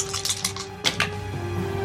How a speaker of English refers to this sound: Alright, so I'm going to roll 2 dice. Yeah, you have advantage.